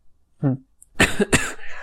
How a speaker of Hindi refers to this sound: खांसी अभी तक नहीं गई.